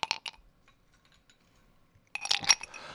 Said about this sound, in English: Three large ice cubes is, I think, the way to go.